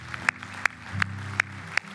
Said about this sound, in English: Do you ever give God a clap offering of praise? Do you ever do that? Would that be okay? Yeah.